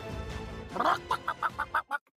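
A chicken clucks in a quick rhythmic series of about six short, clipped calls after a louder opening squawk, fairly clear against a faint background murmur.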